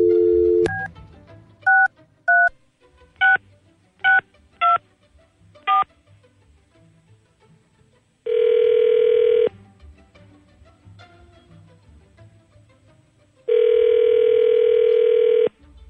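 Seven or so quick touch-tone beeps as a number is dialed, then two long ringback tones separated by a pause while the line rings. No one speaks.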